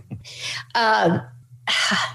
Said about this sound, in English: Excuse me. Air's so dry, it's making me cough.